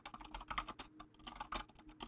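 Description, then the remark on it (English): Rapid, uneven clicking of keys on a computer keyboard, fairly loud, with dense bursts of keystrokes and brief pauses, no voices. “there's a lot of typing noise in this audio over here, so that's kind of tough for whoever's listening to my audio, i.e.”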